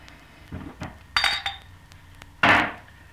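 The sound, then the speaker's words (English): Teacups clink and knock as they are set out for making a pot of tea: a couple of soft taps, then sharper ringing clinks of china, the loudest near the end, with no one speaking. “Right, one spoonful of tea. Right. Cups.”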